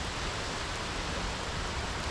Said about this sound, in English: Just lying back and listening to the water come crashing down.